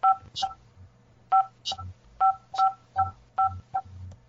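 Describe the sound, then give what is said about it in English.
A series of short dual-tone beeps from a home alarm system keypad as the system is disarmed, about nine presses in an uneven rhythm, each a clear mid-pitched chirp, with a low steady hum underneath and no talking. “System disarmed. Sorry, guys. Ready to arm. My alarm system.”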